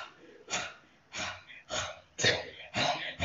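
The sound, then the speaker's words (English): Five strained, breathy gasps come in a steady rhythm, fairly loud, as a person vocally imitates the effort of peeling hands stuck on a pole free. No one speaks. “That's good radio, by the way. With the breathing?”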